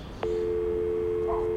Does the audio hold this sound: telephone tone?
yes